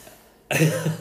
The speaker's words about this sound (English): I feel like that's all I need to do is just make this great coughing sound.